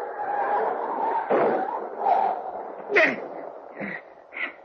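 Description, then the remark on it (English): A dog, just hit by a car on the road, yelps and whimpers in a series of short, sharp, high-pitched cries, several in a row over a low background rumble, fairly loud. “I didn't see him till I hit him. What was it? The dog.”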